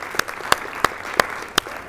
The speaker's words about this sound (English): So you're going to have to clap even louder for her to hear.